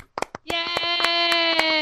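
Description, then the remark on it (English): Clapping in a steady beat, roughly eight sharp claps, with a long, buzzy held note sounding under most of them like a cheer or noisemaker. “Round of applause for Wan Wan.”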